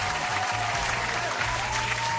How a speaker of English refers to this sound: You're gonna just add in the clapping, and oh yeah, and you guys are.